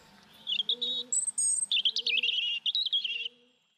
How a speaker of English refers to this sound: Robins, tough little bastards there.